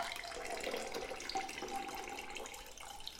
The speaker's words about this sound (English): Get the top off and I'm going to strain that into a Collins glass that's got some ice cubes, keeping it nice and cold.